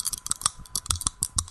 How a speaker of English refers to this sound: You hear these dice?